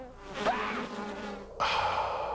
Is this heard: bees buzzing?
yes